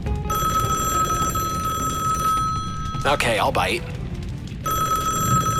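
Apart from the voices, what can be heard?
telephone bell ringing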